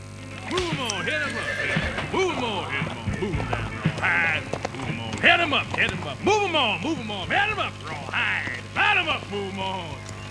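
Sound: donkey braying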